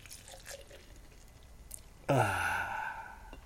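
After a quiet stretch with faint rustles, beer suddenly gushes from a growler into a cup, a steady pour whose tone rises as the cup fills.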